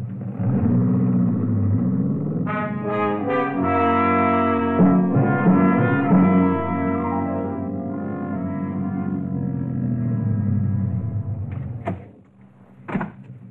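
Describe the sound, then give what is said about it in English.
A car engine rumbles loudly and steadily, its droning pitch rising and shifting as it approaches and turns into a lane, then cuts off near the end, followed by a couple of sharp clicks. “Somebody's coming. It's a car. Yeah. Hey, looks like they're turning into your lane.”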